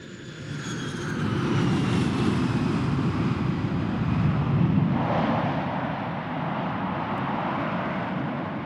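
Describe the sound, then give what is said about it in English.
A passenger airplane waits on the tarmac; a steady, low engine hum drones continuously with a broad rumbling roar and faint whining tones above it, holding an even loudness throughout with no voices. “We're still in the tarmac, waiting.”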